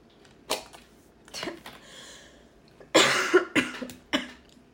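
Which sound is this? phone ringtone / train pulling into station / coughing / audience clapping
coughing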